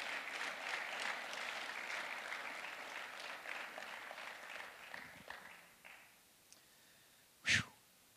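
An audience at a morning service claps together in a dense, steady patter that tapers off after about six seconds, followed by a short quiet stretch and one brief loud burst near the end.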